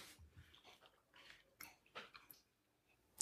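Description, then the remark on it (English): Quiet chewing of food being tasted alongside whiskey, with soft wet, crunchy mouth sounds coming in irregular bursts over a few seconds, with a light breath and no talking. “I like around my lips when I eat this and take a sip.”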